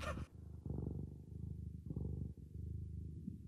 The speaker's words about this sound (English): Did you hear that? I heard a bit of a purr, yes.